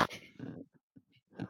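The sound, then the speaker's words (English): A person imitates a snoring snort: a sharp, noisy nasal burst followed by a few short, low, throaty grunts trailing off, then another rasping snort, all fairly loud. “That's what my dog sounds like when he snores.”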